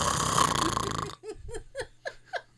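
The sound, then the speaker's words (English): A voice imitates a loud, rasping snore for about a second, then breaks into five short, rhythmic vocal bursts that sound like laughter. “Christine was telling me that I'm like snoring so loud, like right in her ear”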